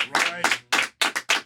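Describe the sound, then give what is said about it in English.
About five sharp, bright hand claps land in a quick, slightly uneven rhythm, with a brief vocal sound blending into the first one. “Now, that deserve a clap right there. Does that deserve a clap?”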